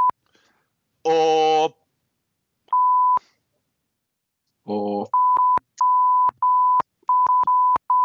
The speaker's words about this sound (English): we've endeavoured to bleep it out, but if you don't want to explain what those bleeps represent, I think some of the more milder swears we've left in as well